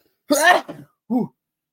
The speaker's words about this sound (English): I'm sorry about that. I totally had a sneeze right there.